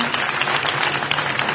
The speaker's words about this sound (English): But in true Saturday Night Live form, you still hear the audience laughing and applauding as they lead right into this fake PSA.